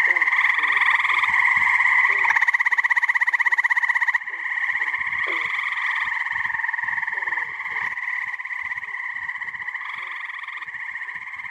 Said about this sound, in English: So those recordings at the beginning and the end were from the field trip that she took with the class. So that was the frogs at the end that we heard.